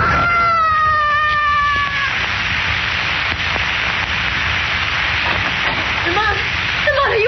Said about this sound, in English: I heard a scream. It was …. Lost his balance. Oh. Fell 26 stories.